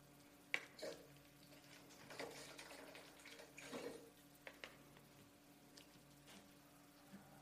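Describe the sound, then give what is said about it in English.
Water collected from a backyard is poured into a bowl in a steady, splashing trickle, with a few small clinks and drips along the way. It is fairly quiet, and no one speaks. “So I contribute this morning with this water with peace and joy.”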